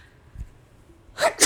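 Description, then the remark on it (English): A loud sneeze during allergy season at the very end, a sharp inhaled burst followed quickly by the explosive release, after a near-silent stretch with no talking. “Bless you.”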